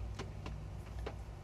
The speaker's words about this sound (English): The background noises today, or I should say soothing sounds, come from a steady rain here. I like rainy days,